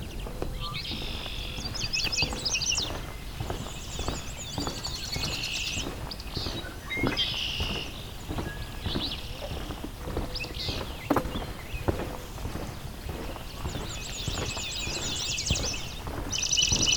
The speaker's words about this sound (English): Swamp sparrow? The ringing trill?